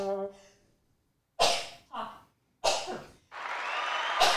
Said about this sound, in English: Also, I'm going to sneeze.